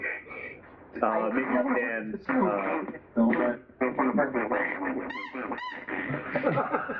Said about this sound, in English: Did I hear a duck sound effect?